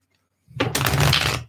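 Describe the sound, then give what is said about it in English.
A deck of tarot cards is bridge-shuffled: after a brief silence, a single dense, fluttering riffle of rapid papery clicks lasts about a second, with no talking. “That bridge there did not shuffle well.”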